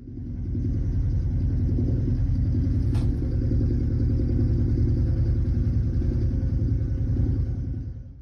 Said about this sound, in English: I think they have a helicopter next door. God damn it. Because that's exactly what this sounds like. And they're shooting the minigun? They must have some form of helicopter back there.